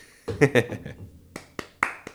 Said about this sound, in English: Please clap. I'm going to clap.